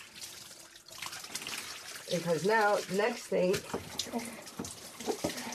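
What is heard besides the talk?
water running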